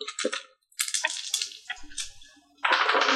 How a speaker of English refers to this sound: Alright, there we go. Just dropping dice everywhere.